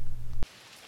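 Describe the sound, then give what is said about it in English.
A low, heavy droning sound cuts off abruptly, leaving a soft, steady hiss of rain falling for the rest of the moment, even and fairly faint, with no voices. “The rain makes my pain go away. The rain makes the music stop.”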